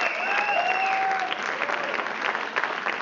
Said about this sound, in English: Can I also give one more hand clap for our dream team? Those are all the folks who serve here.